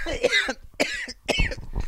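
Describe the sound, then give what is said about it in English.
A loud burst of coughing: three harsh, raspy coughs in quick succession with short gaps, followed by lower rumbling breaths, sounding like a fit of chesty coughing. “This is just a normal coughing.”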